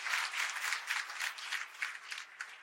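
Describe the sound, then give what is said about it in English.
A crowd claps steadily in praise of the Lord, a dense, bright wash of many hands with faint rhythmic pulses running through the whole stretch, no talking over it. “Come on, put your hands together and give the Lord a hand clap of praise on today.”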